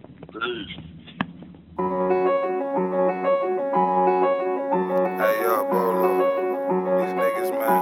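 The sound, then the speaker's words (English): A rap song beat kicks in after a brief bit of talk, loud, with steady layered tones pulsing along and brighter, crisper elements joining near the end. “We're going to play your next tune.”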